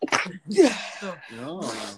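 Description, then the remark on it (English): A loud, close sneeze with a sharp intake of breath, followed by a second voiced, drawn-out sneeze, each burst breathy and forceful with no talking in between. “You got allergies or something.”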